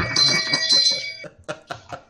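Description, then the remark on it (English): A bright bell rings out loud, a sustained metallic shimmer for about a second, followed by several shorter rhythmic rings that fade in and out. “It's the bells that makes that rock.”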